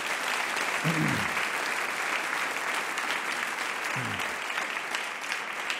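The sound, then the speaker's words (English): An audience gives a speaker another round of applause at an evening event, dense clapping filling the whole stretch at an even, sustained level with a few brief low vocal murmurs beneath it. “We'll give her another round of applause there.”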